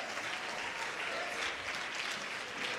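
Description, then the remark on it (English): An audience claps steadily, a dense, continuous patter of many hands at an even, moderate level throughout, with no voices standing out. “Somebody ought to clap a little louder than that.”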